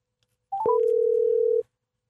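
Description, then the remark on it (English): A phone call being placed: a few quick stepped electronic beeps, then a single steady tone holding for about a second before cutting off. Clear, with no voices. “Let me get Chris on the phone here.”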